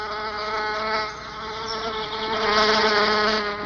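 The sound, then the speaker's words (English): A steady buzzing of male bees flying in to an orchid from up to 5 miles away, a dense harmonic drone that swells and dips slightly as they move around, with no voices. “It is a waxy substance they scrape off with specially modified front legs to make a perfume, a sort of aphrodisiac, essential to attract and stimulate female bees. No wonder males fly in from up to 5 miles away.”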